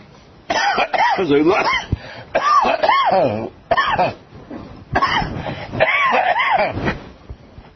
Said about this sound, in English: This cough will be gone on Purim. So you don't have to feel badly about it. It will be gone on Purim.